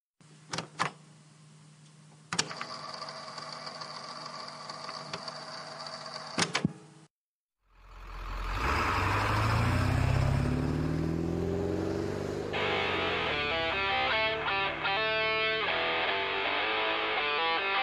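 A steady electrical hum with a few sharp clicks cuts out, then a small RC car engine whines up loudly and revs continuously with a buzzing, rising pitch, with no talking.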